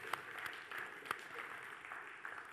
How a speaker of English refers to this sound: Yeah, why don't we give these three a big round of applause?